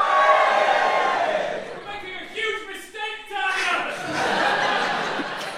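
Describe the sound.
A live audience cheers loudly for several seconds, a dense wash of shouts and whoops with a few individual voices poking out, dipping briefly midway before swelling again.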